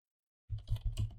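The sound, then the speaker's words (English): A quick burst of typing on a computer keyboard, typing in a search for an old furry comic about a skunk, several crisp key clicks in fast succession after a moment of silence, with no one talking. “Typing in old furry comic about a skunk got me immediate results.”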